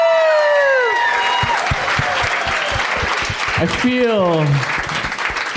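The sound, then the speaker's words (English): An audience claps steadily for about five seconds, a dense, loud patter of many hands, while a couple of voices call out over the applause. “They just applauded for you.”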